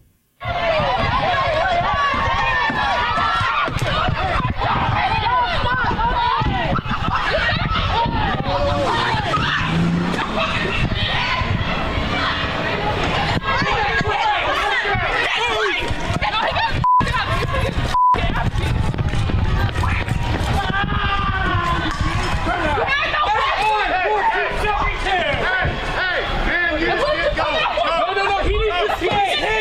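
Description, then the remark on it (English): A dense, continuous crowd roar from a street riot in downtown Portland, Oregon, recorded on a cell phone video, with overlapping shouting voices, scuffling footsteps and running, plus occasional vehicle noise, loud and chaotic throughout without pause. “Just little cell phone videos that he posts, like last year when he showed street riots.”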